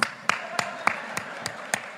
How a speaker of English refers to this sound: And everyone in the room applauded.